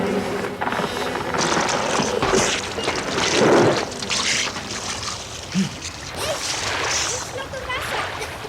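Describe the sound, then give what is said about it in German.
Flowing river water rushes steadily throughout, broken midway by a single louder, heavier splash as a person jumps into the river, with faint, muffled voices underneath. “Hey, was machst du? Willst du etwa reinspringen?”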